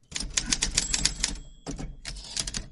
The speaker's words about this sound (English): okay, Paul, we're ready for the typewriter.